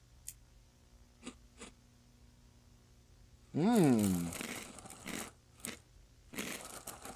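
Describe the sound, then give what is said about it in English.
A little handful of dry gingerbread-flavored cereal is crunched and chewed in a few crisp, crackly bursts, with a brief murmured vocal sound partway through and soft rustling at the start. “Let's finally give it a taste. Dry. Oh yeah. Let's get this. Little handful.”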